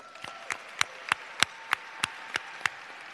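Another round of audience applause in a steady rhythm: about nine sharp, evenly spaced claps, roughly three per second, moderately loud over a faint background hiss, with no voices.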